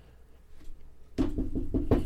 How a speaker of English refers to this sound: Knocking, no answer.